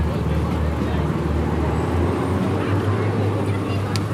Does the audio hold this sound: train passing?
yes